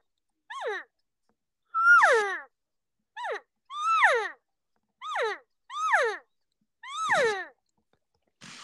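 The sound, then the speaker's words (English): A person imitates cow elk calls, showing how hunters cow call while walking down a game trail: about eight short, nasal mews, each sliding downward in pitch, repeated at a steady, irregular pace with brief silences between and no talking. “So even if a bull did answer to those guys while they're cow calling and walking down the trail, I bet you 9 times out of 10 that they're honestly not even going to hear that bull bugle back.”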